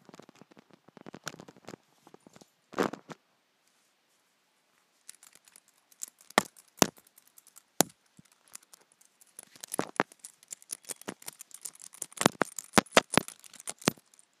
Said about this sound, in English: Let's just begin with the zip sound of it. I think that will be really good. Let's just remove it.